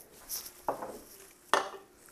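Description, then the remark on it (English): Two sharp hard knocks, about a second apart, as a can and a glass are set down on a dining room table; the second strike is brighter and more ringing, like glass, with faint shuffling between. “I'm just going to put this can and this glass on my dining room table.”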